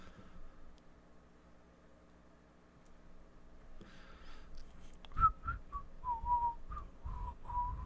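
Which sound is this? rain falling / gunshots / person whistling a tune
person whistling a tune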